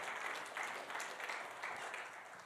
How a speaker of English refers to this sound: I mean, come on, church. I mean, this is what we do. Yeah, come on, clap for that.